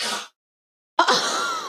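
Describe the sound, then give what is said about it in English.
A dog hacks and coughs up a bone: a short raspy burst, a brief silence, then a sudden harsh, sputtering hack that trails on for nearly a second. No one speaks. “No, he just like coughed up his bone.”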